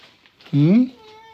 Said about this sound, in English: Hello, Beth. Beth, do you want to join in the conversation? You're on the podcast. Well, I wasn't expecting Beth to be on the podcast, the least friendly of the Chandler cats in this household. But Beth, what do you think of this?